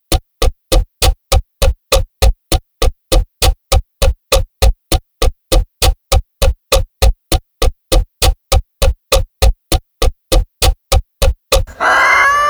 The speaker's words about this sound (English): that was Kalamazoo, the Wonder Chicken from, Pakalakahatchee, Florida. Yep, it's a real town, look it up, it's on the internet.